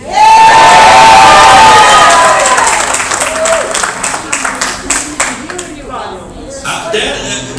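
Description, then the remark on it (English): A large crowd erupts in loud cheering and shouting, with whoops and scattered clapping, swelling at first and then slowly tapering into a sustained, rowdy roar. “If the crowd would have been that way yesterday, the Texas Sackies would have won.”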